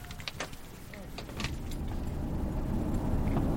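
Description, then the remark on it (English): Keys jingle and a few sharp clunks and rustles sound as someone settles into a truck, then a steady low engine rumble builds and carries on underneath. “Back in the truck”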